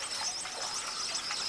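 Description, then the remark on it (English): A dense, continuous chorus of shrill, buzzy chittering from hundreds of white-collared swifts flying at up to 100 miles per hour through a waterfall into the cave beyond, wings whooshing, the high calls overlapping without pause above a steady rushing hiss. No one speaks. “Among the world's largest swifts, white-collared swifts are found from Mexico to Brazil.”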